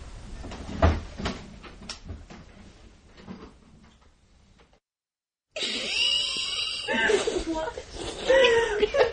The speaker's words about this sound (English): Shutting the door.